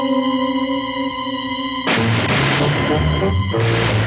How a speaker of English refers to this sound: Gunshots, monsieur. Gunshots, Pop. Gunshots, sir.